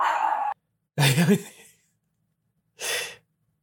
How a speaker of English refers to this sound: Oh, my dogs are barking.